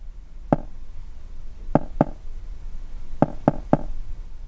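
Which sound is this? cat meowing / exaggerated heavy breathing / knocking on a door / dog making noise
knocking on a door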